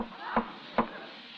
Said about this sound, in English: Holy. What was that? There's someone in that desk. Yeah, someone knocked back.